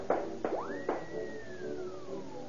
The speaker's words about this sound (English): Those shots came from the official junior police pistol.